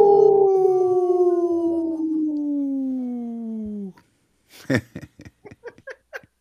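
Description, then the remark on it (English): Three people on a Native Roots Radio show howl together for the Howling for Wolves campaign, a long, sustained wolf imitation that slowly slides downward in pitch for about four seconds, followed by a brief pause and a burst of laughter. “We're all three howling.”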